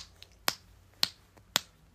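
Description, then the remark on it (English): Three crisp finger snaps at a steady, slightly uneven pace, each a sharp bright click with a quick decay and quiet pauses between them. “You learned to snap.”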